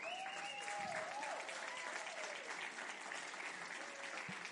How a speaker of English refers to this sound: Now we get to cheer one more time.